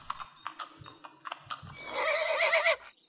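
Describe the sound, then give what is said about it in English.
A horse's hooves clip-clop in a steady rhythm as Lancelot rides off, then the horse lets out a loud, quavering whinny before falling quiet. “As Lady Bethesda and the Lord God are distracted by their compliments for each other, Lancelot rides off to break the news to Abigail that their engagement is dissolved.”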